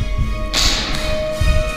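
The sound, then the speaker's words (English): A heavy, blunt slam of a person's face onto a small hard cat statue, a thud with a brief hissy crack, followed by a couple of duller low thumps, no voices. “and then slammed their face down onto the little cat statue.”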